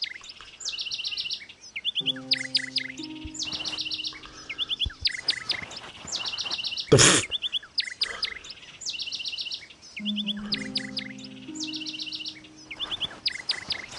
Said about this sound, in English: Where are you, stupid bird? Swipe left or right to turn around and focus the bird in the center, in both ears. So he's behind me now.